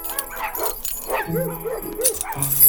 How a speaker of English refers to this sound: Ah! Wow! There are dozens of dogs everywhere!